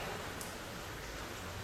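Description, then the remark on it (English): Steady, dense heavy rainfall hisses continuously, an even wash of noise with no pauses and no voices, as if heard outdoors. “It's pissing rain.”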